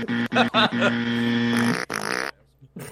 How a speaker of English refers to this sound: You got the extra farting noises. If I got the farting noises, that means it was a tiny little bit funny.